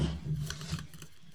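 Quiet, papery snaps and rustles of playing cards being shuffled, a few short crisp bursts over a low background hum, with no one speaking.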